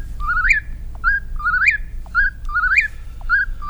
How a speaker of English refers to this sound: It's the eastern whippoorwill.